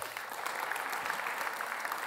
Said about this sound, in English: Amen. Come on, let's applaud.